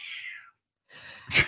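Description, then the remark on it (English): A cat meows twice, a thin high-pitched cry that fades, then a brief pause before a second rougher call ending in a sharp, breathy burst, fairly quiet. “The cat like that.”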